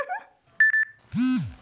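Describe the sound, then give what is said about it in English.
A cell phone beeps three times in quick succession, short and clear, between brief murmurs and a loud, drawn-out whining cry. “Get off that damn cell phone.”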